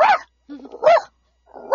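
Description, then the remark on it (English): A man's voice imitates a small dog's happy, high, yappy barks, three sharp bursts spaced about a second apart with short gaps and a low throaty sound between them. “Happy barking.”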